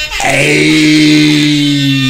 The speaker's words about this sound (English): Yeah, because his face is there, but we give him the old school air horn.